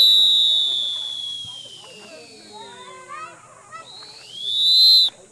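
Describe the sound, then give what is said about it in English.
A Fox 40 Classic whistle is blown in the oscillating style of Austin city pool lifeguards. A shrill, high piercing tone sags and warbles unevenly in the middle, then swells back into a loud, steady shriek before cutting off abruptly. “That's my bad oscillating whistle, so.”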